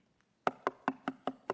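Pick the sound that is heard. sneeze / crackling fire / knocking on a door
knocking on a door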